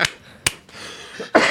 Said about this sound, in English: And there's the hacking cough.